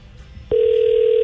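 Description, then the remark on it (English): After a brief moment of quiet background noise, the ringback tone of an outgoing phone call to a rehab facility starts abruptly and holds as a loud, steady, unbroken tone until the end. “Now it's probably ringing, and he's like, huh?”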